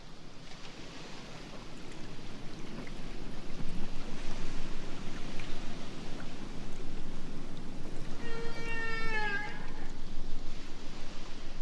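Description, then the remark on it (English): A North Atlantic right whale gives a single rising, tonal call with bright harmonics, standing out briefly above a steady, loud wash of low underwater rumble. “So the North Atlantic right whale is one of those animals that came just a whisker away from extinction.”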